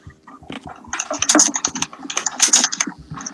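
Rapid clattering keystrokes on a computer keyboard, fairly loud, coming in two dense bursts of irregular clicks with short pauses between, with no voices present.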